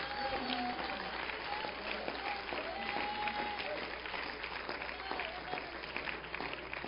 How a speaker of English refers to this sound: Come on, can we clap our hands to Jesus for a minute?